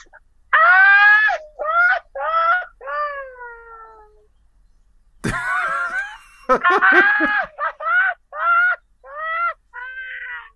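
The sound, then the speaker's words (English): A loud Mexican grito done by a man at 7 o'clock: a single voice lets out a string of high, warbling yelps and whoops, breaks into a sharp burst, then trails off in more rising and falling cries. “You know what I do at 7 o'clock here? What? Because my wife and kids think it's funny. I do a grito.”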